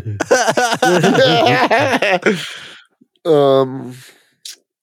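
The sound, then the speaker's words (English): Someone mimics loud chewing with their voice, a quick run of rhythmic, wet, mouthy vocal bursts, followed by a brief sustained voiced sound. “That's how you chew it up.”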